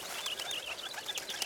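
Several small birds, addressed as Ren and Finch, chirp and squabble as they fight, in rapid, overlapping high-pitched calls, a busy, agitated twittering that stays continuous with no voices present.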